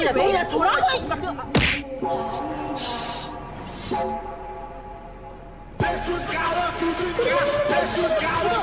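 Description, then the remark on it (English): Three sharp smacking hits of a woman's punches landing on a man's face, spaced a couple of seconds apart, with people talking and exclaiming loudly throughout. “For the audio listeners, it was a woman punching a man.”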